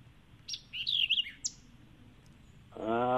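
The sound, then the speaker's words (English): A white-eyed vireo sings a quick, emphatic phrase of sharp, slurred chirps, clear against quiet outdoor background; near the end, a louder voice-like tone begins. “I bet you if you've got white-eyed vireos and they are yellow green, they are vocalizing.”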